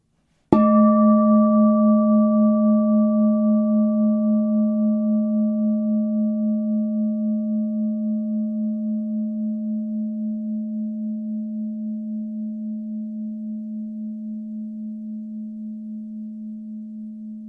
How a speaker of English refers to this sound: Hear the sound of the bowl calling you to look within. Let it center you. Let it awaken you to God's presence.